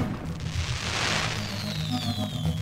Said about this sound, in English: Turns out that blast came from an over-the-top gender reveal party.